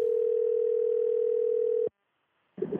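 A telephone dial tone drones at one steady mid-low pitch for almost two seconds as a call is placed to an aunt, cuts off abruptly, and after a short silence a brief burst of sound begins.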